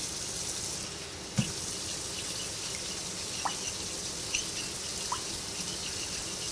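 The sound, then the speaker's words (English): Hot water runs steadily from a tap while cooking, to be mixed into a sauce, a continuous hissing splash with a few small clinks and taps against the sink along the way. No one speaks. “We're going to mix a little hot water with this.”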